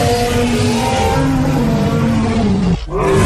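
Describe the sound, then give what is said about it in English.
A loud, sustained elephant-like dinosaur roar from a film, with layered trumpeting and harmonic tones, overpowering, cutting out briefly near the end before surging back. No voices. “I want to hear that, like, elephant.”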